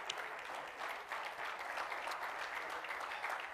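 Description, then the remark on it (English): An audience claps hands together to praise the Lord at an evening church service, a steady wash of many overlapping claps, continuous and fairly loud throughout, with no voices standing out. “Come on, clap your hands and praise the Lord tonight.”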